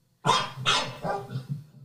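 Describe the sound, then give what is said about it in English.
Two dogs bark back and forth at each other, a pair of loud barks followed by several quicker, softer ones in rapid succession, with no talking. “But when you have two dogs barking, right, that you get some information, where in the other ones, it was very obvious they were both barking about the same thing, where in this one, these are two different barks.”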